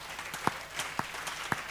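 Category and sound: crowd, audience clapping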